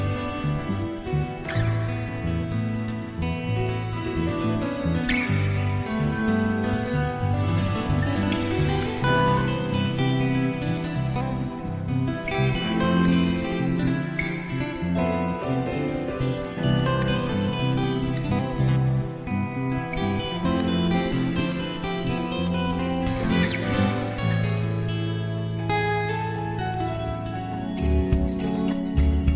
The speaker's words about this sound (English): This is a beautiful ambient or atmosphere track with flowing and relaxing sounds. I love the guitar picking and the interplay between the guitar and the piano